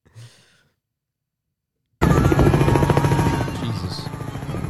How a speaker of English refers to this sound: There's a helicopter flying over a group of what was assumed children. You start to see a ton of shit fall from the sky at very high speeds.